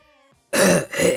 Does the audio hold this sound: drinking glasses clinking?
no